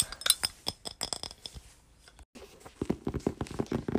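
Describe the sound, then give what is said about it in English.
A small pink glass strawberry bottle is handled, giving bright, irregular clinks and light taps, followed by quieter rattling and scraping as it is moved about. No voices are heard. “Oh yeah, I think I showed you this last clip, but this is my strawberry bottle. It is a small pink bottle.”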